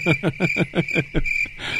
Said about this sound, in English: Crickets, that's right. Yeah. Fucking crickets.